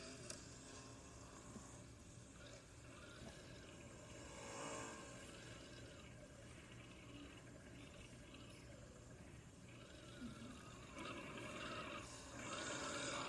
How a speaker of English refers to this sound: Alright, I'm going to do a burnout in turn two.